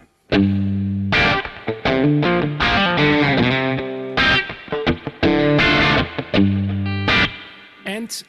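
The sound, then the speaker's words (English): An electric guitar on a vintage setting plays a run of chords and single notes through tremolo placed before spring reverb, loud, with the strummed phrases ringing out and wobbling as they sustain. “Old school setting, tremolo behind the spring to get this flattering spring sound.”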